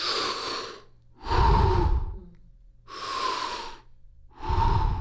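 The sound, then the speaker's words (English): A voice imitates the heavy, labored breathing of a man on oxygen: four loud, raspy breaths, alternating inhale and exhale in a slow, steady rhythm with short pauses between them. “I went and saw him, and he's on oxygen, and he's breathing.”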